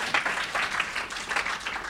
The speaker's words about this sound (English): Quite a trendy thing, so let's give her a round of applause.